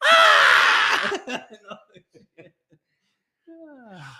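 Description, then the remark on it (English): A loud burst of several people yelling together for about a second when a secret word is said, trailing off into scattered chuckles and short laughs before a single voice starts talking. “And remember, every time somebody says a secret word, we yell real loud.”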